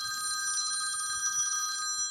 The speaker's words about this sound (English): Oh, wait, we got an emergency phone call coming in from the old man. Hold on.